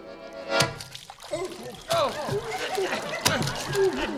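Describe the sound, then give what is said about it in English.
A sudden loud splash as three people fall into the Pacific Ocean, followed by splashing and churning water beneath excited, sputtering voices. “And that's exactly where we left our intrepid trio last week, falling through dark space towards the fathomless briny deep of the Pacific Ocean.”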